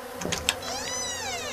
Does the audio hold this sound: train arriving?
no